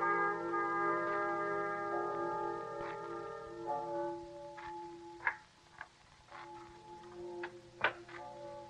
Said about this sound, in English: Tell me, what do the bells ring for? The dead.